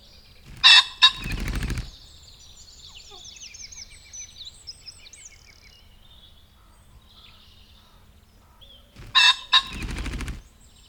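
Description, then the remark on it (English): A ring-necked pheasant flushes twice, each time a loud burst of harsh, rapid cackling notes mixed with whirring wingbeats, separated by a quiet stretch of soft background bird chatter. “A low, two-tone note call often given when they flush.”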